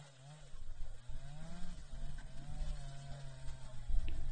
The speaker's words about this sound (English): You see that line down there at the bottom of that tree? Right there. That is a guy with a chainsaw who is cutting down the tree. Let me drop the volume a little bit because chainsaws are loud. But watch.